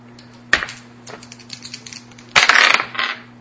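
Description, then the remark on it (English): Dice rolled for an opposed skill test in a tabletop role-playing game clatter across a hard tabletop: a sharp single knock, then a louder rattling tumble that settles quickly, over a faint steady electrical hum with no voices. “Not the right dice.”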